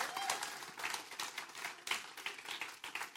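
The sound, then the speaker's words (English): An audience clapping together, a dense, steady patter of many hands with recurring louder surges, continuing throughout at moderate volume with no voices standing out. “Y'all better be clapping up in this place.”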